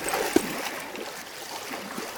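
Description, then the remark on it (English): Water sloshes and swirls steadily in the tide at a beach, a continuous watery wash with one brief splash early on and no voices. “We're still pretty deep in the water.”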